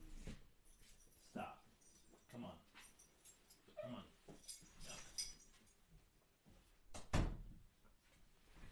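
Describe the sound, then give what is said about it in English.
Dogs play in another room, giving off scattered yips and whimpers with a few sharp thumps and clatters, fairly faint and intermittent throughout. “The dogs are, you know, they're in the other room quiet, and then all of a sudden they've got to start playing.”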